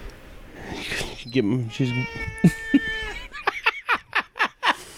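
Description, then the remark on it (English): A female cat meows loudly inside a house, a couple of drawn-out, wavering cries in the middle, followed by a quick string of short vocal bursts as someone talks. “Cat's in the house.”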